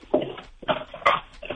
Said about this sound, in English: I like Chuck. I like Chuck's. I want to hear more of this Chuck. She sounds awesome. She's awesome. All right. Do you want me to try to get her to bark again? One more time.